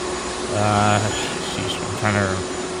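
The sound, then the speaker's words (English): Two short bursts of a droning vacuum cleaner sound effect, played for NHL teams eliminated from the playoffs, about half a second each, rise over a steady background hum, with a brief pause between them. “What teams got the vacuum?”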